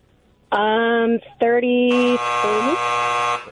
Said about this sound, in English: It's a Friday, and she said it as the buzzer went off.